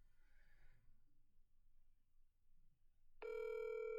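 After a few seconds of quiet, low background rumble, an outgoing phone call's ringing tone cuts in abruptly near the end, a steady, loud electronic tone.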